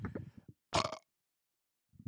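A short, loud burp erupts after a brief bit of voice, rough and gravelly for about a third of a second, followed by silence and a faint voiced murmur.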